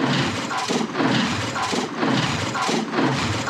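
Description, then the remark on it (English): The chicken walker walk cycle sound effect from Return of the Jedi: loud, repeated heavy clanking mechanical stomps with a hissing, grinding texture, coming about every two-thirds of a second with no voices. “So we got the chicken walker walk cycle.”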